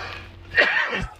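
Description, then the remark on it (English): A single harsh cough at a children's flag football practice bursts out and trails off into a lower, throaty rasp, with no talking around it. “Excuse me, I'm going to cough.”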